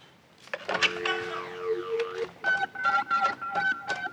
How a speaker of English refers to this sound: Dialing a telephone.